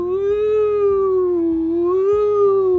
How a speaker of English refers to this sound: The sirens were getting closer, and the kids were driving as fast as they could, whilst also bumping into the gutters and into parked cars and into everything.